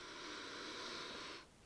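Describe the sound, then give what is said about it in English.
One long, deep sniff through the nose at Citra hops, a steady airy hiss lasting well over a second before cutting off abruptly. No one speaks. “Fuck, this smells so good. I just want to sniff this all day.”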